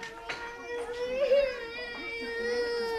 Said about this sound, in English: Sometimes you have lots of tears on the first day. Sometimes the tears don't start until maybe the second week.